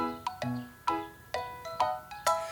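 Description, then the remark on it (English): A bell rings out on a film set in a quick series of about six bright, clanging strikes, each tone ringing briefly before the next hit, with no voices, as the film crew moves about. “We hear a bell and see a lot of movement as the film crew move about.”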